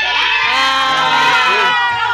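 children cheering

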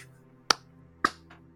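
single hand clap

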